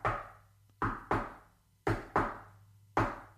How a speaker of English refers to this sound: Back in Roman's locker room, there's a knock on his door. Oh. And it's this.